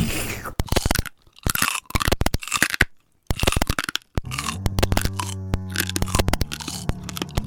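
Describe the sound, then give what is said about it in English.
Loud crunching and chewing of a fresh-looking leafy wreath, with repeated sharp cracks and crackles in uneven bursts, briefly pausing before a final stretch of scraping, crunchy chewing. “Here, eat this wreath.”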